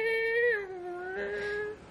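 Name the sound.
voice imitating a chainsaw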